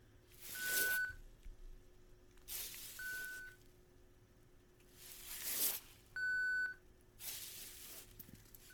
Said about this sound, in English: At 67 decibels, he shouldn't be able to hear the beep at all. But there it is, clear as a bell.